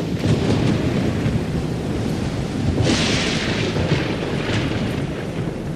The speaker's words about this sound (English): The first night, they end up in a storm.